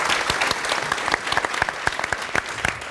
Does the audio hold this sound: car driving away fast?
no